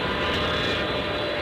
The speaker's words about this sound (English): For Marylanders who hear this every day, the takeoff and landing of planes at BWI Thurgood Marshall Airport